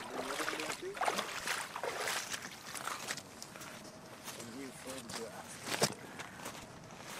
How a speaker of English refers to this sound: I'm on the river today, the Wollastook, with descendants of the original boat builders. The canoe is so large it has to be dragged to the water.